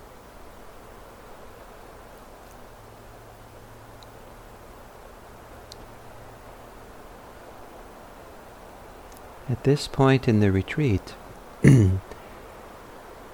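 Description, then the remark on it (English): Steady rain makes a soft, even hiss that runs unbroken through the whole clip, and near the end a person begins speaking over it. “the rain is supporting us to help us kind of keep a little more, contained and focused.”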